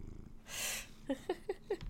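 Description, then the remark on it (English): A cat named Pravi, being held, purrs in a short series of soft, rhythmic pulses, following a brief breathy rustle; no one speaks. “Come on. Meow for me.”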